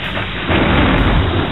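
A loud, continuous roar of storm thunder over the English Channel, rumbling and swelling stronger about a third of the way through, with a dense, noisy wash like heavy weather and no voices.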